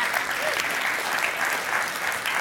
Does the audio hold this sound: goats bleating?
no